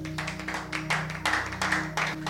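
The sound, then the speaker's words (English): Scattered, uneven clapping from a small handful of people, soft and irregular rather than full applause, over a steady low electrical hum. “Just a few are clapping because you don't appreciate what God is doing.”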